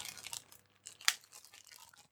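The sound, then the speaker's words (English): A bag is torn open, with crisp crinkling and rustling and one sharp tearing burst in the middle, all fairly quiet and without any voices. “I'm going to open up the bag.”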